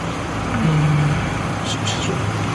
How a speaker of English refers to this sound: There's another car coming up behind us.